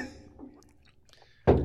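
A glass slammed down hard on a table: one loud, sudden thud with a brief ringing tail, after a stretch of quiet, low murmuring background.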